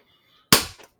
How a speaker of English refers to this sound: Fuck. This motherfucker did clap.